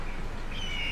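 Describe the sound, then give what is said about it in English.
A few thin, high bird chirps surface late in the second over a steady wash of morning traffic noise on the Beltway, faint, with no one talking. “Oh, look, a bird.”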